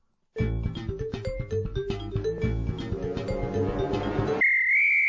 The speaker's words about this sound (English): You wait. I might break out the whistle again soon.